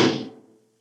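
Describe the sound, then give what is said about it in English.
A heavy door opens with a single loud, deep clunk that rings briefly and fades within about half a second. No voices are heard. “Open the door!”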